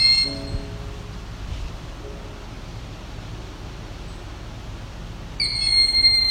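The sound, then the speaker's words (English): A Cooper's hawk screeches an alarm call in a forest, a brief, fainter cry at the start and a louder, sustained, harsh call near the end, with steady outdoor hiss in between and no talking. “So I'm looking at what could be a Cooper's honk.”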